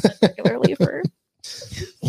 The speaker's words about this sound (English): I always feel bad when I cough. I'm like, please. Isn't it so like weird coughing at all these days? You're like, damn, yeah. Everyone's going to think I have COVID.